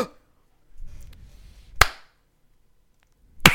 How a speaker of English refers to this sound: The slow clap.